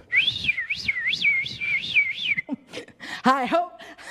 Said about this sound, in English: Listen, if he came to me and he's like, but you know, you can do your laundry by whistling.